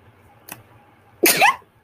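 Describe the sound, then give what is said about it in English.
A single sharp, high-pitched sneeze bursts out after a brief catch of breath, loud and squeaky with a rising whine to it, then fades into quiet. “That was the most disgustingly high-pitched sneeze I think I've ever mustered out in my life.”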